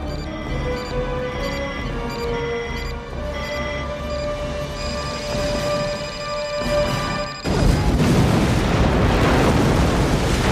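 Sustained orchestral tones play for several seconds, then a loud film explosion bursts in and keeps roaring with heavy, rumbling noise to the end. No one speaks.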